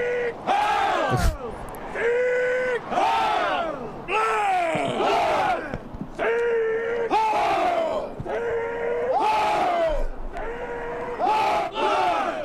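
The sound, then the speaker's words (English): A loud crowd yells and shouts at Laura Loomer in overlapping bursts, voices rising and falling in repeated waves of angry chanting-like cries, sustained throughout. “They start yelling at her.”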